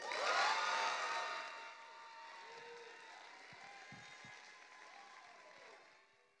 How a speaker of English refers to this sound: So would you please help me and give a big warm round of applause